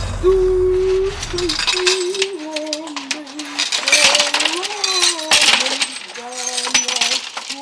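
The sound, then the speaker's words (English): Shards of broken glass clink and scrape in bright, irregular bursts as a woman in Kyiv, Ukraine, brushes them from a window, singing the Ukrainian national anthem in a slow, steady melody over the clatter throughout. “Watching video from Kyiv, the capital of Ukraine today, a woman brushing glass from the window, still singing the Ukrainian national anthem.”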